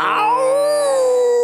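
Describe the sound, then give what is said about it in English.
A single loud, drawn-out howl with a slightly wavering, sliding pitch, heard alone for about a second and a half, sounding pained and mournful: a wolf howling in pain after throwing itself hard against a tempered glass window. “They covered their heads and howled in pain.”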